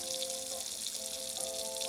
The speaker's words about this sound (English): You stand there at the sink, wiggling your hips as you scrub the dishes.